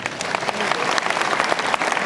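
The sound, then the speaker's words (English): A crowd applauds for a woman, many hands clapping steadily in a dense, continuous patter that stays loud and even throughout, with no voices standing out. “Clap for her.”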